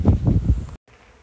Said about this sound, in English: I don't know if you can hear that, and it's certainly not as loud as it was. And you can hear spots of rain as well, but I thought the bee thing was over. But it took most of the hive, or the swarm, and there was a few stragglers